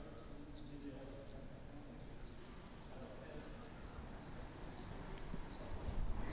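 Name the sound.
swallows chirping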